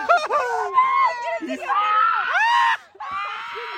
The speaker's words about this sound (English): Stop screaming.